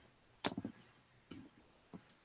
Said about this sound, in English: That was a fucking cocked roll. This is why you don't have a million dice in your dice tray at one point.